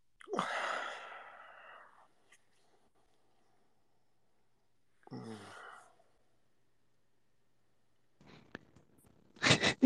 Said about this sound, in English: We hear you yawning and groaning